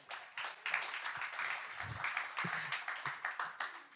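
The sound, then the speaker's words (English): A crowd applauds steadily for several seconds, a dense wash of many hands clapping at once, fairly loud, with no talking over it, giving a round of applause for a volunteer helper. “Give him a massive round of applause.”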